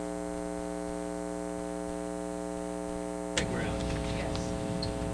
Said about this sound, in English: I hear a hum. So I can turn that all the way down and we still have a hum. Still have a hum.